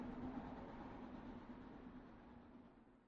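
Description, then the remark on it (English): A train rolling by with a steady, dense rumble and a low droning hum underneath, gradually easing off toward the end. No voices. “Train Passby: Train Chugging Sounds”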